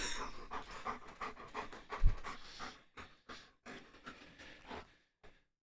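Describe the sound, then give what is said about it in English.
An 80-pound German Shepherd dog pants heavily in quick, rhythmic breaths while being wrestled with, loud and continuous at first, then slowing into separated puffs with short pauses. “Wrestling with the 80-pound German Shepherd.”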